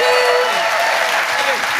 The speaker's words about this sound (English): Ladies and gentlemen, please give a massive round of applause, Rachel Parris!